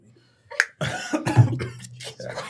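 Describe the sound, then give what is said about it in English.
A sharp cough bursts out, followed by a longer stretch of harsh, raspy coughing and throat clearing that sputters on for a couple of seconds. “Just coughing all over the goddamn place, spraying corona.”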